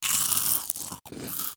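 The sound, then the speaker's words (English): Loud crunchy chewing in two quick bursts split by a brief pause, with gritty, brittle crackling and no talking. “to start off, I just want to give the listeners a quick quiz on what am I about to chew on.”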